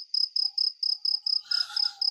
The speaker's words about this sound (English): I'm going to edit in cricket noises.